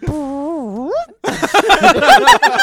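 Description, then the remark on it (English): A single drawn-out, tonal fart that dips and then swoops upward in pitch at the end, like a question, followed immediately by people talking loudly. “You know, it's that Valley Girl fart. There you has go. The upwards intonation.”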